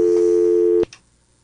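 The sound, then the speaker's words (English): A steady, loud telephone dial tone hums for just under a second, then cuts off abruptly, leaving a faint click and near silence. “I pushed the button and got the dial tone.”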